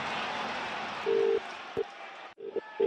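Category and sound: signal or alarm, phone call ringing tone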